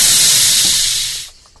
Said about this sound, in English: You hit me. You swooshed it too fast on me there, Mark.